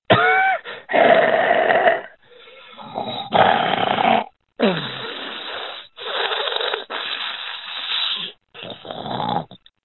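Labored, obstructed breathing: loud wheezing and snorting breaths come in a string of rough bursts with brief gaps, some ending in strained, gasping rasps.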